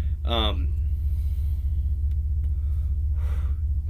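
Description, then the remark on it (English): A steady, heavy engine rumble from a parked truck fills the whole recording, with a faint car driving away outside toward the end and a brief voiced sound near the start. “That's my wife leaving in the background of my truck, if anybody's wondering.”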